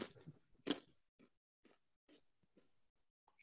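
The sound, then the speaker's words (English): Chewing of a dense, chewy Kind snack bar, with a sharper bite near the start followed by a steady series of soft, wet chews at roughly half-second intervals, no talking. “I don't think there's really a crunch. No, except your teeth crunching together. Those are hard to eat.”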